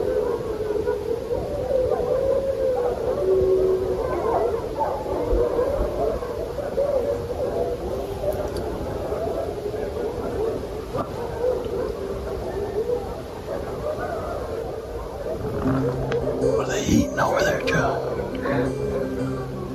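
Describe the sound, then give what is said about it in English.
Far-off animal barking comes in scattered, repeated calls over a steady wash of outdoor background noise, with a few higher, howl-like tones near the end. “About the same and feistier. Man. Barking.”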